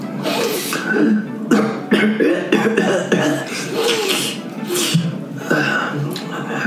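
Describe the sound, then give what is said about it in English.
Fairly loud wheezing and sniffling from a reptile, with repeated breathy snorts and rasping inhales spread across several seconds, mixed with raspy, voice-like noises. “Yeah, so you hear a wheezing and sniffling.”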